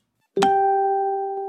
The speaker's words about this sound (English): Oh, I just got another notification. Derek Ho just posted something for sale.